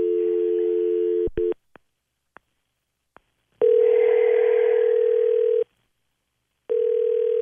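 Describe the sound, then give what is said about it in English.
A steady telephone dial tone cuts off into a few sharp clicks of dialing as someone phones their mother, followed by a long electronic ringback tone, a pause, and the ring starting again. Clear, with no voices. “So let's get Mom on the phone and give it a shot, okay?”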